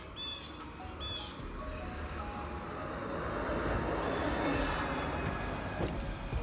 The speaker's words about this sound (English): Here's the bus, so I'm going to let it ride by.